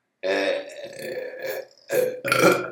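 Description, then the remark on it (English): A long, loud burp rumbles for a couple of seconds, briefly breaking before a second forceful belch finishes it off. No talking is heard. “Big burp.”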